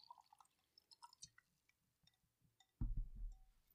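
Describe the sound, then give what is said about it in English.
Wine called Love Me Not, from a freshly opened bottle, is poured into a glass: a few light drips and glassy ticks, then a sudden, steady gurgling stream of liquid that carries on loudly to the end. No one speaks. “Let's pour it up. That sound.”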